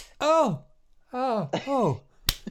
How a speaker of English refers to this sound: Oh, yeah, stop slapping me. Stop, wake up, stop then.